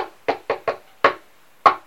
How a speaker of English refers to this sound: So I'm going in. I'm knocking on the door.